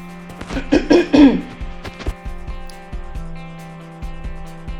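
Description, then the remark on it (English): A man clears his throat twice, fairly loud, with a short rough rasp, followed by a quiet steady hum and faint ticking clicks. “Now, I would normally put the Sandy and Daisy giggle in, but you're actually going to get division and me clearing my throat, so just bear with me.”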